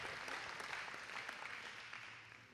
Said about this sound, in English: Come on, you should be clapping. Nice, enjoy that.